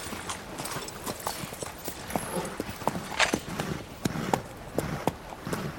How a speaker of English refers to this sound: As the rider approaches the town, he slows his horse to a trot. Whoa now.